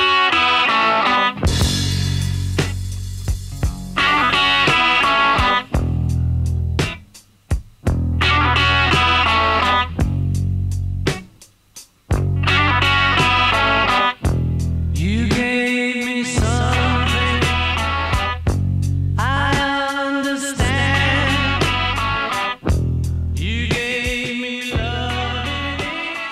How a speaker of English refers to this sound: But yeah, it's stark. There's a very stark rhythm section, that stabbing, distorted guitar attack. Yeah. The echo on his vocal.